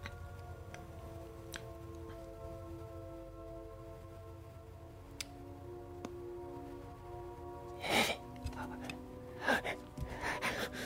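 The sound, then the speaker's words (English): A voice imitates odd creature noises: scattered wet clicks and lip smacks, then a few sharp breathy gasps and chittering bursts near the end, all over a steady low electrical hum. “Kind of weird, odd series of gasps and chittering and slimy, kind of almost lip smacking sounds.”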